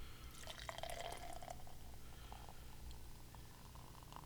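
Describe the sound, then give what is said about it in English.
Older, very carbonated golden beer pours into a Heidelberg glass with a fizzy, splashing trickle and faint bubbling, fairly quiet, over a steady low hum. “But why don't I go ahead and just, I'm going to pour it out and see how it looks.”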